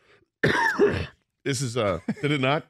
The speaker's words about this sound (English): You did not push the cough button there. I tried pushing off. My apologies. That was a stony move. just right into the mic. It just coughed directly into the mic.